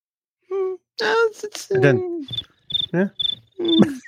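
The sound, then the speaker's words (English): A short run of bright, high-pitched cricket chirps repeats in quick pulses, set against brief wordless vocal sounds like gasps or murmurs that come before and between them. “The crickets have arrived.”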